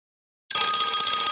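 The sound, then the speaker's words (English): An exercise timer bell rings out abruptly after a short silence, marking the end of a 15-second exercise hold, a loud, sustained, bright metallic ringing with high piercing tones that continues steadily to the end, with no talking over it. “Got 15 seconds. Make sure you got that straight line in your body”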